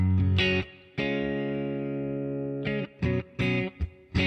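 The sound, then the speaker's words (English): Electric guitar plays a few plucked notes, then one long sustained note ringing out, followed by a quick run of short notes, all with a light reverb tail and no talking. “So there's a little bit of schmo, and that's my reverb I would have on everything.”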